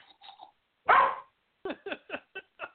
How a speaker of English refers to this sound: And there goes the dog barking in the background.